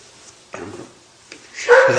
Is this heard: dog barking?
yes